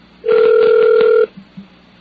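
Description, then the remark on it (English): A single ringback tone on a phone line during an outgoing call to Atomic Athletic, one steady electronic burst lasting about a second, loud as if heard through the receiver, followed by faint line noise. “Maybe I should just do, like, funny phone calls.”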